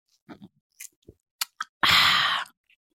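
Someone sips a drink: a few small, wet mouth clicks and gulps, then a loud, breathy slurp lasting about half a second. No one speaks.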